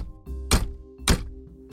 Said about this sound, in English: Finally, I used the heel of my hand to bang on the door, and I was surprised to hear the thud echo.